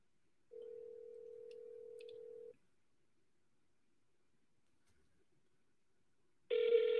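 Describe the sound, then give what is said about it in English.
An unanswered phone call's ringback tone on a call to a property seller: a steady, buzzy electronic ring lasts about two seconds, falls silent for several seconds, then starts again. No one picks up or speaks. “Nope, that seller's not picking up.”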